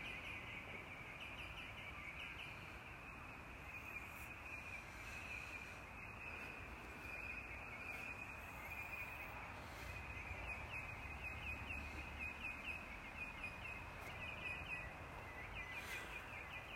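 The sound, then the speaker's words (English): Birdsong fills the air in a steady, dense chorus of chirps and trills over a constant outdoor hiss, continuing evenly throughout with no one speaking. “Listen to that bird song again.”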